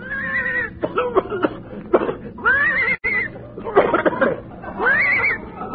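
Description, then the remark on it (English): A horse, hitched by a rope to tow a car 10 miles to Palm Springs, whinnies several times in a row, the high neighs rough and raspy, broken up by snorting, coughing-like bursts in between, loud with no talking. “I think the horse is horse.”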